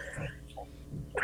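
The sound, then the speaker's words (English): A single sharp sneeze bursts out at the very end, loud and breathy, after a second of quiet murmuring and soft breath sounds. “Bless you.”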